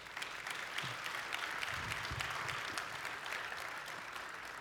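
An audience applauds a pastor, many hands clapping in a dense, steady patter that holds at an even level throughout, with faint low murmurs underneath.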